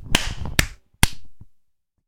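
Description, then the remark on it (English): Three sharp hand claps used to slate a shot while shooting, irregularly spaced across about a second, each a crisp bright smack with a short ringing tail, alone with no voices. “That was a shitty clap.”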